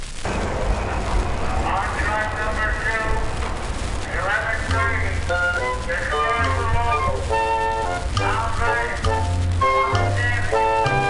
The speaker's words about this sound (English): Screeches, roars, and unbelievable crowding. The New York subway.